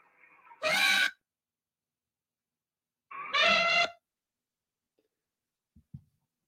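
Two loud, brassy elephant trumpet blasts with a harsh, harmonic rasp, the second longer than the first, separated by silence and followed by a couple of faint clicks, heard in the video game Jurassic World Evolution.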